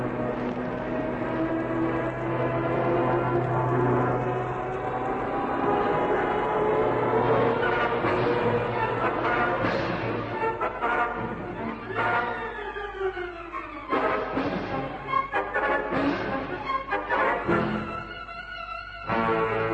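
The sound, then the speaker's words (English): A Mosquito propeller plane's engine drones loudly and steadily, then its pitch swoops downward as the aircraft dives from the sky at a patch of elephant grass, followed by a rough, sputtering roar that rises and falls. “Michu and Haines hold their breath as the first plane sweeps down from the sky at the patch of elephant grass.”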